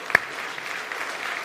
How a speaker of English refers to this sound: I applaud you because that's a hard decision to make. Amen? Give those who have done that a clap. Amen?